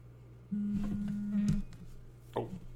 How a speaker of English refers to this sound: Oh, the fans buzzing. I was like, whoa, what happened?